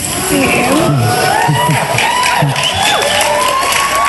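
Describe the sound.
A loud audience cheers and claps, with many overlapping voices shouting and whooping in a dense, continuous roar lasting about four seconds.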